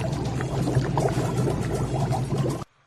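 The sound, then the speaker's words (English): Spaghetti dropping into a pot of boiling water in a computer game, a steady loud bubbling and sloshing that runs for a couple of seconds, then cuts off abruptly into silence. “Now click on the world famous Teddy Spaghetti to add it to the boiling water.”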